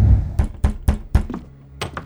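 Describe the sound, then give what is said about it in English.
Rapid, insistent knocking on a door late in the evening on August 8th: four quick, evenly spaced raps with a heavy low thud, a brief pause, then two more knocks. No voices are heard. “And then, late in the evening, on August 8th, I heard an urgent knock at the door.”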